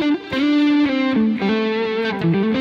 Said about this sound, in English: One thing that I love to do is play a note, then I'll reiterate that note by sliding to it.